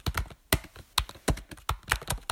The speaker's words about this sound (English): someone either typing loudly or possibly with a hammer. Oh, of course. You know, you've got the noisy keyboards. The mechanical keyboards.